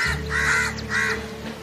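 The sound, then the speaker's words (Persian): Two harsh crow caws in quick succession, loud, over a steady low hum in the background. “کلاغ‌ها که رفتار قارقاری رو دوست نداشتن، تصمیم گرفتن اونو تنها بذارن.”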